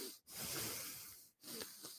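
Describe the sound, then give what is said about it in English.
A voice imitates a packed movie theater audience drawing breath during a quiet film: two long, airy, hissing inhalations separated by a brief pause, fairly loud, with no words spoken. “from the entire theater, like, everybody is breathing in so many scenes, and like, it added to tension of it for me”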